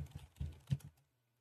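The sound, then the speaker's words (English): Quick, uneven keystrokes clatter on a computer keyboard as someone looks something up on Google, several soft taps in a short burst, fairly quiet, then the typing stops and only a faint hum remains. “And I apologize for the typing.”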